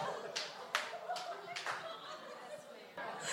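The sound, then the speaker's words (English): Scattered applause from an audience: a handful of sharp claps at irregular intervals over a low crowd murmur, fairly quiet, with a brief swell near the end. “I don't know if you should clap yet.”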